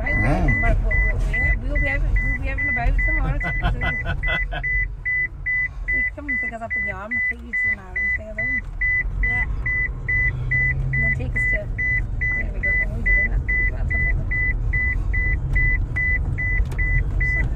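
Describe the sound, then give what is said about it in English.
A car's seatbelt warning chimes in a steady, rapid string of identical high-pitched beeps over low engine rumble, with people talking during the first few seconds. “It's a seatbelt. Why didn't you put it on?”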